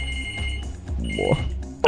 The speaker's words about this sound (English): okay, the phone's ringing. I'll get back to that story later. Hold on.